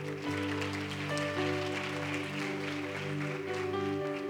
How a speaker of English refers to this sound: Give Pastor Renee a hand clap.